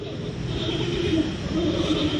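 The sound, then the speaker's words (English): Giant panda mating noises: a rough, continuous droning rumble that holds steady for the whole stretch, buzzing and engine-like, at a fairly even, moderate loudness. “Sounds a little like a lawnmower.”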